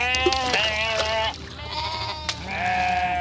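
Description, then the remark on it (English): Several sheep bleat in overlapping, wavering cries, one after another with barely a pause, loud over a low background rumble. “But the articles describe how a livestock ship was tossing sheep overboard as they perished, crossing the Red Sea.”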